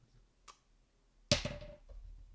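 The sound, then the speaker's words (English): A light tick, then a twenty-sided die, dropped rather than rolled during a tabletop game, hits a hard surface with a sharp clatter and rattles briefly before a last small click settles it. No one speaks. “He dropped it, he did not roll that. He dropped the dice.”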